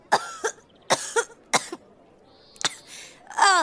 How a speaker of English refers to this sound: She just goes into a fit of coughing.